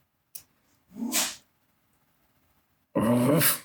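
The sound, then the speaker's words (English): Two dogs, Abby and Malcolm, who is part pit bull, growl while playing: a brief snap, then a rough mid-length growl, a pause, and a louder, harsher growling burst at the end. No one speaks. “Well, now they're playing. Good. Play.”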